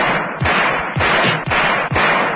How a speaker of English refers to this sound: Lambert emptied the entire barrel at the advancing figure.